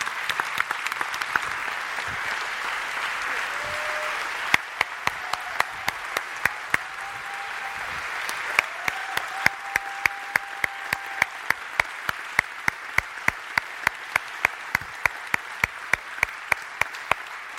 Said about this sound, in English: could we all just honor Bruce and Lynn by just giving them a round of applause